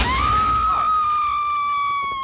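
A burst of shattering noise gives way to a loud, long scream of a person falling, holding one steady high pitch for about two seconds without wavering, with no talking over it.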